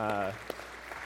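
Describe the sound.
A brief voiced sound opens, then a crowd's applause fills the rest: a steady, dense patter of many hands clapping at an even, moderate loudness.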